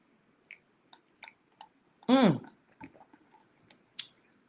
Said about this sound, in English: Wait, sippy sip.